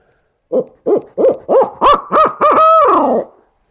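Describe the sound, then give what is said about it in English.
An owl-style caterwaul blown on a locator call to try to make a bird gobble: a series of rising hoots that quicken and climb into a drawn-out, wavering wail, loud with no other sounds. “And if that doesn't work, then maybe do some more caterwauling.”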